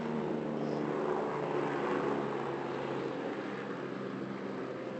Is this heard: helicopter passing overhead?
yes